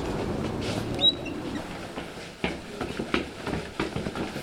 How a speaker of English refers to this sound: Boy, that's a big sound. What was that? That's the fast-moving train headed out from Boston, echoing into this empty loft space that we're working in, so the loft is the filter for the train.